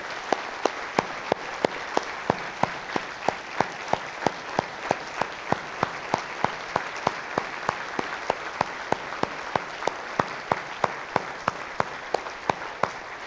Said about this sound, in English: And I just want to give them a thundering round of applause for their hearts of service.